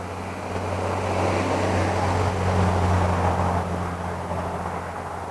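A heavy truck engine rumbles past with a deep, steady drone and broad road noise, swelling slightly in the middle before easing off. No one speaks.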